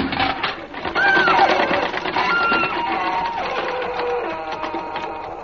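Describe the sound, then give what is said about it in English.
The engine of a farm machine with a hopper for straw runs steadily, giving off a loud, continuous mechanical clatter and rattle, with a brief high-pitched squeal early on and no one speaking. “Fraser, stop the engine!”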